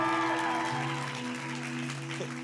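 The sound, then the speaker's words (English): An audience claps steadily for a couple of seconds, a dense, even patter of many hands over sustained low musical tones. “So please give her another round of applause.”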